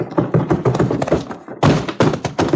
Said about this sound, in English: Someone was heaved right through the doors of that saloon by the bouncer.